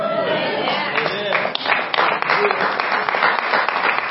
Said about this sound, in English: Man, if that's all it gets to get some applause, it's going to be a good Sunday. You guys are primed.